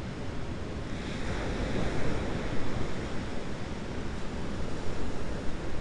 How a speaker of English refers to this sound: To allow the sound of waves to wash over, to call us into some kind of deeper presence.